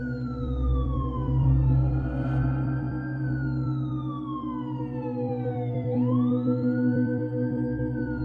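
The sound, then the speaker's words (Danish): Wailing ambulance and police sirens rise and fall in slow sweeping glides as police and ambulances arrive, loud over a steady low rumble of engines and traffic, with no one speaking. “Kniven sad der stadig, da politi og hylende ambulancer ankom 5 minutter efter.”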